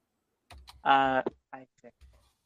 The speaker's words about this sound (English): He's like a machine gun. I wish I could type that quick. Gracious, sir. Oh, y'all heard me typing? Yeah, yeah. You're like a machine gun over there.